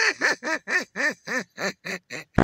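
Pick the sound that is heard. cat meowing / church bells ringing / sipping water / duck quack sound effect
duck quack sound effect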